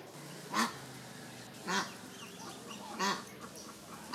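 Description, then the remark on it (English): Ducks quack in three distinct bursts spaced about a second apart, loud, over a steady background of softer flock chatter and ambient noise, at a duck farm along a canal in rural Vietnam. “We are at a duck farm that is along the canal. It's a little noisy over here.”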